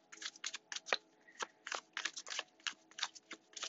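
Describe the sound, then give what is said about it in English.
A Taramucha tarot deck being shuffled for a reading in quick, repeated riffling bursts, crisp papery flicks continuing steadily for several seconds with no talking. “I am shuffling the Taramucha, the tried and true.”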